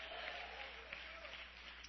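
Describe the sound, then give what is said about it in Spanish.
An audience claps their hands for Jesus Christ in the evening in a dense, continuous wash of applause that holds steady throughout, with faint voices mixed in beneath the clapping. “Dele palmas a Jesucristo en esta bella noche.”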